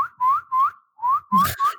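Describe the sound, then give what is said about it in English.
A person whistles a short series of rising notes, four or five quick chirps with brief gaps between them, fairly loud, a call to summon raccoons. “What did it sound like when you whistle for the raccoons?”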